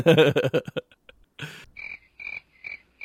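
A few loud, rough croaking bursts give way to steady, high-pitched cricket chirps, played as a sound effect after a joke, repeating in short, evenly spaced pulses, with no one speaking.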